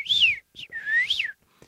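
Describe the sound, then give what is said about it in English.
A voice imitates the beeps and whistles of a film robot character: two long warbling whistles sweeping up and down with a short chirp between, fairly loud, ending in a faint blip. “didn't say words, just beeps, whistles, noises, and just to be as memorable as a character as he was”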